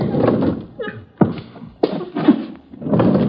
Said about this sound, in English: Parlor's here. Sliding door, I'll open it.